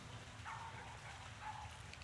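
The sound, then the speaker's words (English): A small dog yaps twice, short high barks about a second apart, faint beneath a steady hiss of rain-like background noise. “I want to pause just for a moment to reflect on the dog barking in the background.”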